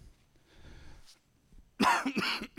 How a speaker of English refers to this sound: I'm sorry for the cough.